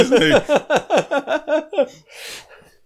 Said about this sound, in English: Why are those horses so whiny? I don't know. Oh. Oh, a guy in a diaper stole their horses.